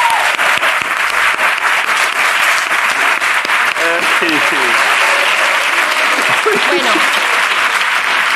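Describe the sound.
A crowd applauds steadily, dense clapping filling the whole stretch at an even loudness, with a few faint voices and cheers rising briefly through it midway and near the end.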